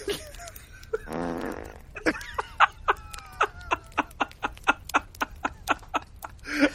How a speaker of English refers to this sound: Oh, he says, there is at least one real on-camera fart in this movie. Try to guess which one, it says.